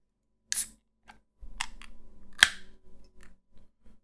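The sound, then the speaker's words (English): A new sour beer from Third Moon is poured: a short burst of hiss, then beer glugs out steadily in a low, bubbling pour, with a sharp click midway and soft fizzing and clinks trailing off as it spills onto a desk. No voices. “Whoa, it's fizzing right away.”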